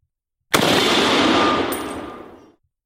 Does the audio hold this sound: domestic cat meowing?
no